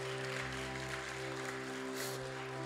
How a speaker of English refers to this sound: And I get to be excited. Let's clap for that.